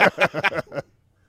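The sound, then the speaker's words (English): Several harsh bird caws in a quick run of about five calls, loud, then the sound stops abruptly and leaves near silence. “Birds.”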